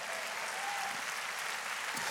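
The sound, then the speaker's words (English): An audience claps hands in a dense, steady burst of applause, many overlapping claps forming a bright, even wash of sound with no speech. “Oh, come on, clap your hands.”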